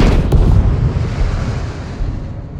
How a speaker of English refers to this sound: And the first challenge is what happens when a supersonic jet initially goes past the speed of sound, the sonic boom.